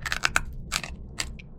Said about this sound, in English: All with a crunch that rivals potato chips. Seriously, listen for yourselves.